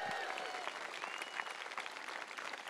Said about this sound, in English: Thank you very much. Give him another big round of applause.